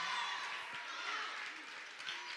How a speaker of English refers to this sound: There's a wild crowd in here this morning, y'all.